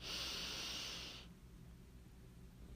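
A single deep, airy breath drawn in through the nose during a breathing meditation, lasting just over a second, clear, then fading into quiet.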